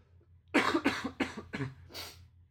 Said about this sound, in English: Well, I apologize for that. You'll probably hear me coughing throughout the podcast. I'm recovering from a kind of stubborn cold, so I apologize.